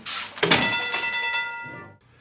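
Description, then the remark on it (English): A bell in a film scene is struck once and rings out with a bright, steady, multi-toned shimmer that slowly fades over about a second and a half, following a short burst of noise. “And then what do we hear? A bell.”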